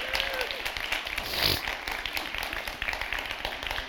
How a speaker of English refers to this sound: And can we just give those who set up this morning a round of applause? Thank you.